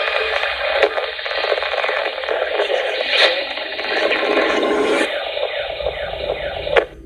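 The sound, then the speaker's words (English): Continuous crackling static on a radio transmission fills the whole stretch, a harsh band-limited hiss with scratchy bursts and sharp clicks, fairly loud, with no voices coming through. “You got a lot of interference or something.”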